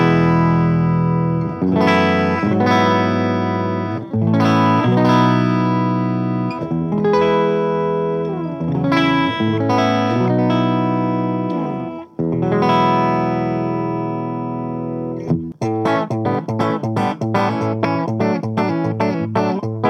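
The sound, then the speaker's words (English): A clean electric guitar on the bridge (back) pickup alone, through an amp with the volume knocked back, plays ringing chords with bright, chiming harmonics, shifting into quicker picked notes near the end, steady and fairly loud with no talking. “So let's start with the clean in the bridge pickup position.”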